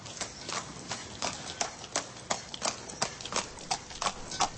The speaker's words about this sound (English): Horse hooves sound, so it sounded like this.